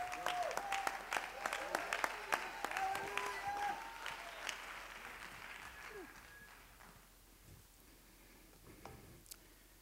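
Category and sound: crowd, audience clapping hands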